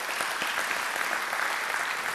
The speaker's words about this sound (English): Give God a praise clap today.